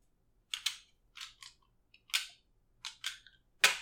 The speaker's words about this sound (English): Your dice thing always sounds like you're like loading a gun.